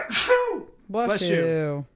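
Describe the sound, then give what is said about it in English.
A single sneeze: a sharp, breathy burst followed by a brief pause and then a loud, drawn-out voiced exhale. “I sneezed on the truth”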